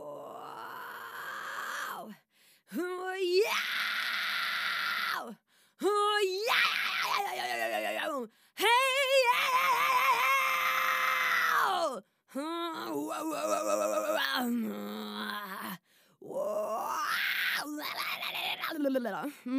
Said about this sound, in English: Right, so maybe I'll show you a few of my noises. This could be a little bit of an exercise. I'll just give you a little try of what I usually do when I learn how to scream.